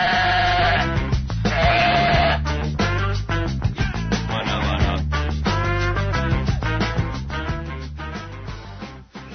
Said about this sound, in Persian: آقا یه شب کله پاچه گذاشتم، ترس این که نسوزه قد زیرشو کم کردم، که صبح در قابلمه رو برداشتم، گوسفنده گفت داداش درو بذار سوز میاد.